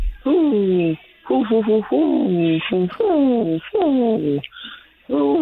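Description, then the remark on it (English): A person imitates an owl call with a run of wavering, hooting vocal sounds in quick bursts over several seconds, slightly tinny as if over a phone line. “That was an owl call.”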